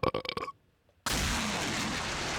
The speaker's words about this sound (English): Dude, how sick is that rocket blast off, though? I love doing the blast off, dude.